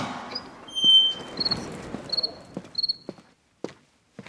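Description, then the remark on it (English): The door to the GZM studios opens, with sharp latch clicks and thuds and a thin squeaky creak, followed by a few scattered knocks and steps. No one speaks. “Opening the door to the GZM studios now, get ready for our usual burst of activity.”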